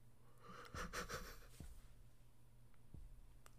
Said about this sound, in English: Sorry, I was yawning again.